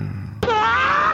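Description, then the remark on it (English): After a brief quiet lead-in, a person lets out one loud fake sneeze: a sudden burst followed by a drawn-out, voiced, slightly rising tone, more groan than real sneeze. “Fake sneeze is not one of them.”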